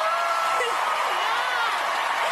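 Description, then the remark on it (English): An award-ceremony audience cheers and claps as a winner accepts an award, in a steady, dense roar, with overlapping voices and bright, hissing applause sustained loudly throughout. “They're smiling and cheering and clapping, right?”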